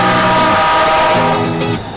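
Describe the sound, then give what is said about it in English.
A loud, steady rumble of a Metro train pulling into a station, with a droning mechanical whine layered over the roar that eases off slightly near the end. “Next train arriving.”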